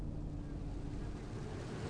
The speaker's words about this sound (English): Our first stop of the day is a sacred spring. A small but fierce waterfall pours out of the mountain.